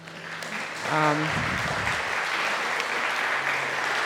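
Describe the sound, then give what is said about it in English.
A crowd breaks into sustained hand clapping to bless the Lord at the end of a church service, a dense, steady wash of applause, with a brief voice heard near the start before the clapping swells. “We've come to the end of the service, and we just want to maybe just bless the Lord in terms of a hand clap and just acknowledge how good he is.”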